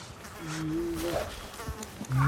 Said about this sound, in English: And in between them, you're hearing bugs, you're hearing flies, you're hearing birds off stage, you're hearing tree wind, you're hearing the cubs going on. And that would really based it in reality.